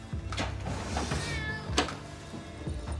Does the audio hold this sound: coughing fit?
no